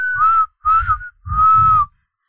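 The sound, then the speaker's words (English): A person whistles three loud blasts, two short then one longer, imitating a referee's halftime whistle, with a breathy rumble under each and nothing else. “That was halftime. I just didn't do the whistle.”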